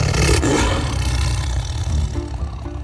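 A lion's deep, rumbling roar fills the moment, loud, sustained for a few seconds with a rough, growling texture and no voices over it.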